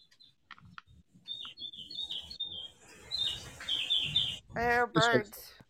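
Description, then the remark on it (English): Garbled, distorted phone-line audio from a call-in caller, full of high warbling chirps and squeaks like bird calls. It runs continuously with muffled voice fragments underneath and a louder burst of harmonic chirping near the end. “No, he sounds like a bird.”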